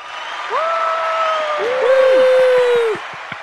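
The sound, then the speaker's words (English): A round of applause, a dense wash of clapping with long rising-and-falling whoops and whistles over it, ending in a few separate claps. “Round of applause, Sound of round of applause.”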